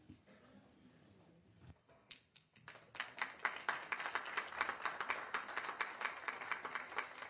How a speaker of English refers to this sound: We don't usually get applause for that, but that's great.